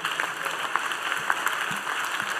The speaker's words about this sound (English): Clap for Jesus.